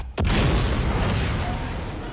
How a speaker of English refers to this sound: boom! Suddenly the door bursts open and soldiers with shields and guns make their way in.